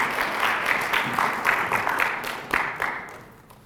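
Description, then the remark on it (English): An audience applauds with a dense, steady patter of many hands clapping at moderate volume, with a few sharper claps standing out before the applause thins and fades away at the end. “Well, clap in, but not me.”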